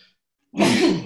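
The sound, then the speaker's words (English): After a moment of silence, a single loud sneeze bursts out, a harsh breathy blast that lasts about half a second and fades at the end. “Bless you, bro.”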